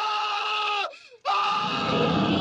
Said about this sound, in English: And his reaction to it is how I think any human being would react to it. Honestly, Marshall, just cut in the scream here.